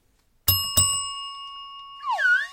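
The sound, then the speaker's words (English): A bright metallic news bell rings twice in quick succession, its clear tone lingering and slowly fading, followed by a short warbling sound near the end. The ringing is loud. “We got to ring that news bell.”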